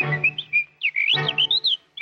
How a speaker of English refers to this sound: anybody knows anything about whistling knows really probably one whistling song, and I'm going to play that for you right now